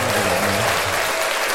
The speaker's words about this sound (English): Yeah, you definitely get a round of applause for that. Hold on, we definitely need that.